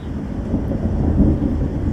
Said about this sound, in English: Yes. Come through, storm.